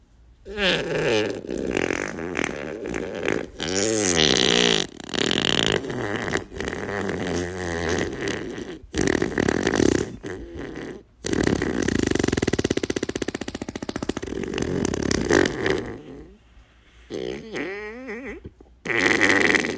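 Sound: long fart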